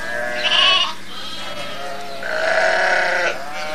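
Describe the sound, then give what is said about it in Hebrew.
Two sheep bleats, a short wavering one followed by a longer, louder cry after a brief pause, clear with no talking over them. “אתה אוהב את הכבשים?”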